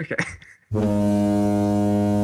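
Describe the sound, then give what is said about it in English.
After a brief burst of voice, a spoiler horn played in a car, plane or boat guessing game lets out one loud, steady blast, a deep buzzing drone rich in harmonics that holds without wavering for over a second. “Incorrect. It's the incomparable spoiler horn.”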